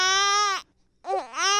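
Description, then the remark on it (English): A baby boy cries into a radio microphone in a 2005 recording, two loud, high-pitched wails separated by a short breath. The first is steady and the second wavers, dipping and rising in pitch, with no talking. “Cry right into this microphone”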